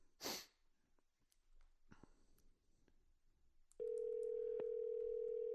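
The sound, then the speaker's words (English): After a brief noisy burst and some quiet rustling, a loud, steady electronic phone ringing tone starts partway through as someone calls a friend on the phone, and it holds unbroken to the end, with no one talking. “Okay, let's call him, see if he answers the phone.”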